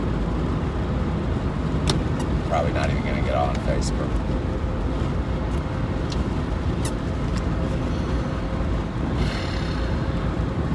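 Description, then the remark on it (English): Steady low rumble of road and engine noise from inside a moving car as more cars start to appear on the road, constant throughout, with a man talking over it and a few faint clicks. “All right, now Facebook, and then I've got to get off here because we're starting to get some cars. I don't like to touch the phone when I'm driving.”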